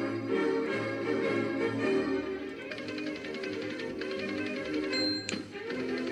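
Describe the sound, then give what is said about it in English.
A short, bright jingle introducing a letters segment plays on its own, with steady tapping percussion over sustained tones and a high chime ringing out near the end. “why don't you talk to the listeners while I bring up the letters music?”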